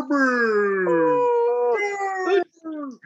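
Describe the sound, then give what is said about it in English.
A dog lets out a long, drawn-out whining howl that wavers in pitch, then breaks off and gives one shorter whine. It is fairly loud, with no talking. “I'm fine with a cameo appearance when he starts, like, doing that super masculine whine.”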